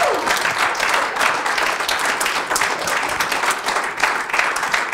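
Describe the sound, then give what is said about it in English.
Sustained applause from a sizable audience, many hands clapping densely and steadily at a fairly loud level for several seconds, with no voices rising above it. “Can you guys give these a big round of applause?”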